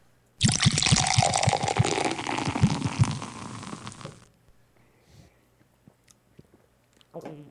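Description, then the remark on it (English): Several people sip carbonated pumpkin beer brewed with ginger ale, from orange cans with green tops: a loud, fizzy rush of liquid with wet slurping clicks lasting about four seconds, then near-silence with a few small knocks. “So a lot of carbonation. It's brewed with pure ginger ale. Down the hatch, bros.”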